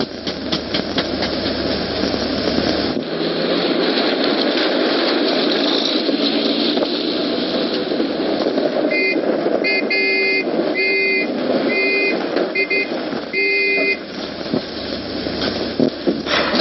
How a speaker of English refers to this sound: Hey, sounds like another car. Well, get in the hedge over there.